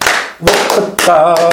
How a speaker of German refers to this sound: Ja, aber ich wollte nur noch mal sagen, Herr Kapellmeister, Klatschmarsch, ne?